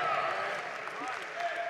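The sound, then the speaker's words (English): An audience erupts in a dense, steady wash of shouting, clapping and stomping feet, many voices crying out together over continuous applause, loud for the whole short stretch. “That's a really good place right there to shout and clap and stomp feet.”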